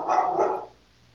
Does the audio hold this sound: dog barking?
yes